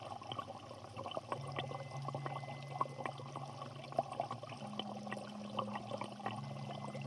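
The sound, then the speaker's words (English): Water laps and splashes gently at a shoreline in an irregular, continuous patter, with a low steady hum running underneath. No voices are heard. “Maybe I can try and explain it by describing the sound of the shoreline.”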